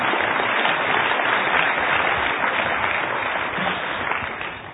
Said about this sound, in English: Well, you guys can clap. I'll let you clap for them.